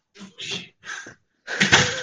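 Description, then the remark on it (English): A roommate opens a room door: a few short rattling, scraping bursts as the handle and latch move, then a louder sweep as it swings open. No one speaks. “Just my roommate opening the door.”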